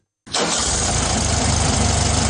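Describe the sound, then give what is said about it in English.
An air-cooled Volkswagen Beetle engine catches abruptly after a brief silence and settles into a loud, steady idle with a rough, throbbing rumble. “No more its humpbacked hood or its air-cooled rear engine.”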